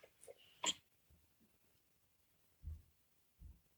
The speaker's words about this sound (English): So, excuse me, sorry about that. I had to clear my throat for a second, I apologize.